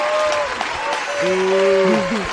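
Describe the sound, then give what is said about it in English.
A crowd claps steadily and loudly for a couple of seconds, with sustained whoops and cheering voices rising over the dense applause. “Let's hear it one time, everybody. Come on, make some noise.”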